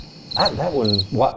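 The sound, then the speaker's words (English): Two short bursts of high, pulsing cricket chirps, fairly loud, with an indistinct voice-like murmur sounding beneath them. “Silence. Crickets.”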